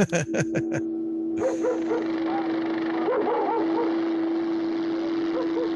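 Several dogs bark in a quick burst of about six sharp barks, then keep yelping and whining over a steady, droning engine-like hum.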